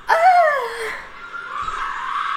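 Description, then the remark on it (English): A women's tennis player, Sharapova, gives a loud, piercing shriek, rising sharply and then sliding down in pitch for just under a second, followed by a steady hiss of background noise. “She's like yelling.”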